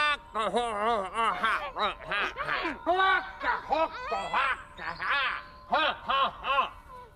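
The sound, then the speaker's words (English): A man in a film imitates a chicken, letting out a rapid, choppy string of throaty clucks and squawks, fairly loud, with a few brief pauses, sounding almost like strained laughter or choking. “a moment where he mimics what he believes is to be a chicken”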